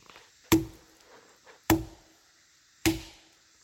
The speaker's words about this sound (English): All right, do three more knocks.